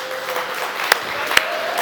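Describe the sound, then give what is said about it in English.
A crowd at LifeGate on Mother's Day applauds steadily for the women standing up, a dense wash of clapping with a few sharper claps standing out, and faint cheering voices mixed in throughout. “Give it up for these gorgeous women.”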